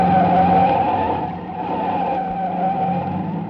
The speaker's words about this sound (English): There was only one way out. I whipped my wheel to the right and skidded onto a bridge.